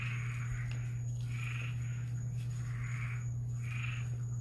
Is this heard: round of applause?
no